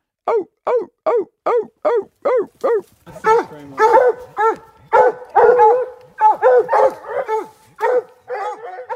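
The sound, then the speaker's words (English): A coonhound that has treed a raccoon chop-barks in a rapid, steady series of short, sharp barks, loud, growing more frantic and overlapping with excited yelps partway through. “And then the fourth sequence is the dog begins to tree. That's when the dog locates the coon and the dog begins an excited series, typically of chops.”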